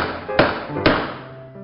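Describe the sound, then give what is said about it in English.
Two firm knocks on a front door, about half a second apart, fairly loud, each followed by a short ring of echo over a quiet background hum. “there's someone at the front door for you.”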